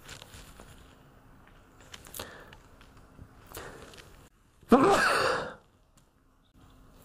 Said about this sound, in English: I've been sneezing a lot, so if I sneeze,